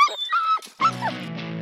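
A dog lets out high, wavering whimpers and whines, then a short pause before a deeper, drawn-out bark-like yowl, fairly loud with no one talking.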